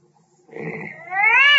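A cat in a room behind a door lets out a loud, drawn-out yowl, starting with a rough, growly sound and then rising into a long, whining meow that stays strong to the end.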